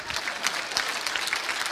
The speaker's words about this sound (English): Clap your hands for the Lord.